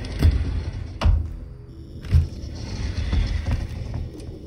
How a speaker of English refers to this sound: Cody started sliding the chest away from the door.